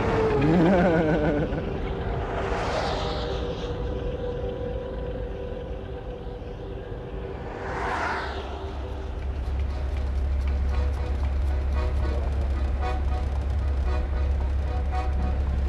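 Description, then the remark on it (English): Two trucks rush past on a road, one after the other, each a swelling whoosh that fades, over a steady low engine rumble that deepens toward the end. “And these trucks are his roller skates.”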